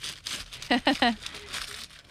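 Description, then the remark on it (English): Wrapping paper is torn off a very big Christmas present in a few crinkly, rustling, ripping bursts, with a short run of voiced sounds from someone breaking in midway. “Yeah, give it a good rip. We are not reusing the paper or anything, so just tear it.”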